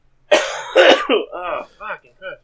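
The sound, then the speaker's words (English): Two harsh coughs in quick succession from a person with a lingering illness, followed by a few rough, throaty vocal sounds as the person recovers. “You still got that cough, eh?”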